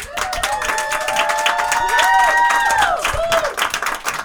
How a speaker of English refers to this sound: All right, let me welcome back to the stage tonight's comics. Give them a round of applause.